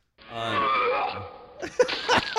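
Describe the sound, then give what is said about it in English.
Someone imitates a donkey's bray with a drawn-out, harmonic voiced honk that slides down in pitch, then breaks into a few choppy, rasping gasps. “So is this with the donkey noise?”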